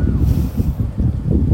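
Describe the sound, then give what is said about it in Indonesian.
Wind buffets the microphone outdoors while walking and jogging beside trees in an empty university area, in loud, continuous low rumbling gusts that swell and dip throughout, with no voices heard. “Sedapnya angin. Sorry lah korang sambil-sambil ni.”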